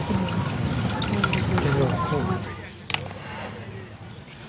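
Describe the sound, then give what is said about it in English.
A cooled homemade pesticide mixture of chili, celery, onion, garlic and soap in water pours and splashes steadily onto plants for a couple of seconds, then thins to a softer trickle, with a brief sharp knock near the end, moderately loud. “Once the mixture has cooled, it's poured onto the plants.”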